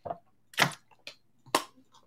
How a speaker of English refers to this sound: Let me take a quick sip of water.